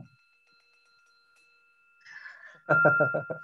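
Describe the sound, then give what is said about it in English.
A soft bell chime rings and its clear tone lingers steadily in the background before loud, choppy vocal bursts break in near the end. “Hit the bell.”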